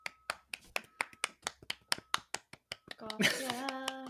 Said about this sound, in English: Golf clap. I hope that didn't peak. I love a soft clap. That's my favorite kind of clap.